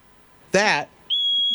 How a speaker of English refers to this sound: That is a pig. It's called a whistle pig. It sounds like my gym teacher back in high school.